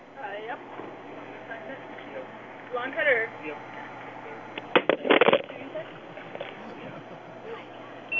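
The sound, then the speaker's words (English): A phone held about six inches above a table is dropped with the right hand, giving a quick cluster of sharp clattering knocks as it lands and settles, with faint voices and steady background noise around it. “I want you to hold that phone about 6 inches off the table and drop it.”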